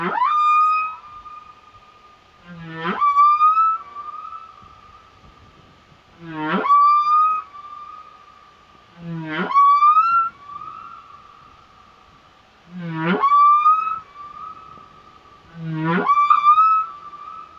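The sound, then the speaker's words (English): Humpback whale (Megaptera novaeangliae) song, recorded by the International Fund for Animal Welfare: repeated rising moans sweeping up from deep low tones into sustained higher wails, recurring about every three to four seconds, clear and resonant with no talking. “One of its most distinctive features is the long barnacle-encrusted flippers. This whale was recorded by the International Fund for Animal Welfare for the British Library CD, Sounds of the Deep.”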